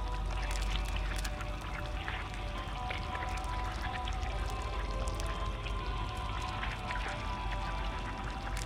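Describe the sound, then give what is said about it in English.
A steady, splashing stream of liquid pours into a pot, with bubbly gurgles and small drips throughout. The sound is continuous, and no one speaks. “Please pour it in the pot.”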